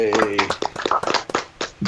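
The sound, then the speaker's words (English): Scattered hand claps from a small group, brief and uneven, mixed with several people's overlapping voices and cheers over about two seconds. “Going to give a round of applause.”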